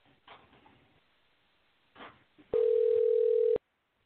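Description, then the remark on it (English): A phone line rings out as a sports radio show calls a guest, with a single loud, steady electronic ringback tone lasting about a second, preceded by a few soft rustling, handling noises, with no voices. “In addition to everything else he's doing, we'll give him a ring right this second.”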